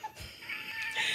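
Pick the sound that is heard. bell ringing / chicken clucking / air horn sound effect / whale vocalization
chicken clucking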